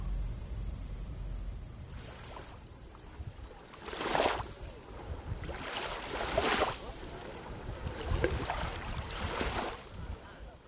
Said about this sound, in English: What you're hearing right now are the waves of Lake Michigan. The mother of Isaiah at Lawrence Correctional Center requested that sound and recorded this dedication.